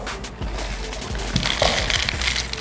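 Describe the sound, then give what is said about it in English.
A steady, rustling clatter of apple crunch cereal pouring into a bowl, with a few louder rattling bursts partway through and no voices. “You pouring you a nice bowl, too.”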